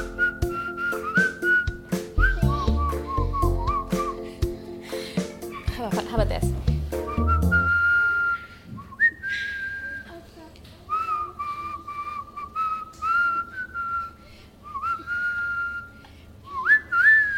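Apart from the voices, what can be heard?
person whistling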